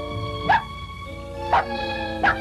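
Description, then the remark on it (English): Three short, high-pitched yips and barks from a hungry puppy named Scruffy, evenly spaced about a second apart, sounding clear over a steady humming background tone. “But you're only a puppy, aren't you? A hungry puppy.”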